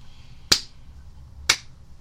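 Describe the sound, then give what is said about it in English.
Two slow, deliberate hand claps spaced about a second apart, sharp, performed by a person mimicking an obnoxious, sarcastic slow clap, with quiet room noise between them. “Foyle comes out doing obnoxious claps, like...”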